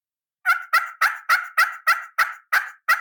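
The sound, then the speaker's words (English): A push-button box turkey call, a simple little box, worked in a steady run of about nine sharp, evenly spaced yelps, fairly loud, with no talking over it. “And you know, a lot of hunters think, oh, it's a push button, but it kills turkeys.”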